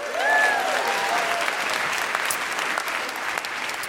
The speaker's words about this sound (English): So give yourselves a big round of applause for that.